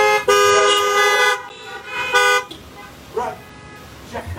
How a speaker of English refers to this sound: Now listen, go ahead and honk your horn or do something.